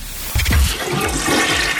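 A toilet flushes, starting with a sudden loud rush of water that swirls and gurgles steadily for the rest of the moment. No voices are heard.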